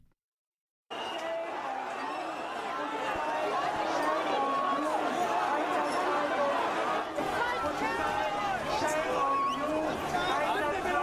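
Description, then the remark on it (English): Dense protest crowd noise at the G20 summit: many overlapping voices shouting and chattering at once, a steady loud roar of babble with occasional sharper calls rising above it after a brief silence. “So you have the noise and the fires and the craziness. Here's some audio, everybody, of what's been going on at the G20.”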